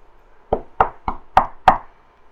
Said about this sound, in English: And there is a rather sudden and firm knock at the door.